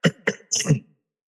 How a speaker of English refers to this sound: My throat starts to get, I start clearing my throat a lot. And I know that from the work that I've done and the research and the teachers I've worked with that this is because your throat chakra is blocked or it's wants to clear.